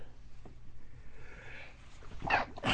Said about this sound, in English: I had to sneeze. That's not going to stop this message.